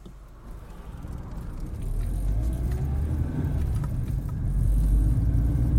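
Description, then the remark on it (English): A van pulls away, heading north out of San Francisco, its engine rumbling low and steady, then swelling louder as it gathers speed, with a faint rising whine from the motor. No one speaks. “The doors close and the van takes off, headed north out of San Francisco.”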